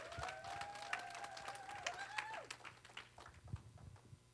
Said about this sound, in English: So if you'll give Jesus the best hand clap you've given him all week long